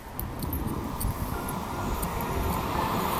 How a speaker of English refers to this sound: Heading into some traffic now. I don't want that in the background noise for you.